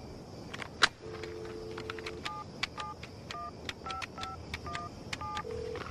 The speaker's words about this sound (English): But while this is happening, the sidekick is in a car dialing a phone sex number